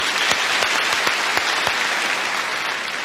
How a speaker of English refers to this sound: I don't know that I've ever done this before. Give a round of applause for somebody who isn't still living. But I'd like us to give Paul a good hand today for what he did that day.